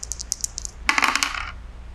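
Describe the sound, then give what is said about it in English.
A few light clicks precede a short rattling clatter, like dice tumbling across a hard surface, which fades within about a second. No one speaks. “Sure, let's roll dice because it's fun.”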